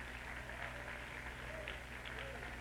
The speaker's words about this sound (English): Oh, let's clap our hands to the Lord and thank him for it.